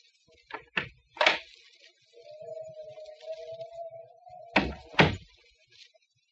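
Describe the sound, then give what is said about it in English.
A woman opens a door: a few sharp latch clicks, a long steady hinge creak, then two heavy wooden thuds. No one speaks. “She's getting up now. Quiet, you two. There she goes to the door.”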